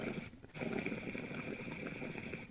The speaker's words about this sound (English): That standard, you can just hear the volume of water, it's moving. Those bigger perks just have like a bit more, they feel airy, but they don't feel like they're like lacking moving water.